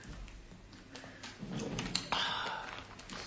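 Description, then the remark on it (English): Someone takes a sip of water: a soft slurp and swallow lasting about a second, with a couple of light clicks, quiet and with no talking. “Hence, I'm going to stay hydrated.”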